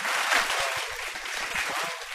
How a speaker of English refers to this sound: This is like applause.